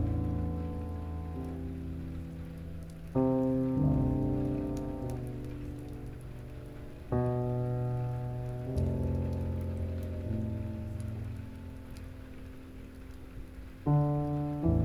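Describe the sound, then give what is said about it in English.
Gentle, steady rain patters softly in the background beneath slow, sustained chords of calm music that swell and change every few seconds; no one speaks. “Be one with the rain, the comforting, rhythmic healer all around you.”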